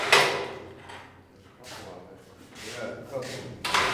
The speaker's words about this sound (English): He holds a big switch for a winch in one hand and straddles a 6-inch slit in the floor. He and 2 other workers are pulling up door-sized metal mesh screens from the slit in the floor.